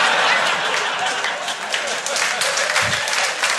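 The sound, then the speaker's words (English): Dense audience applause fills the whole stretch, a steady roar of many hands clapping at once with no pauses and no distinct individual claps. “Honestly, wasn't expecting an applause break.”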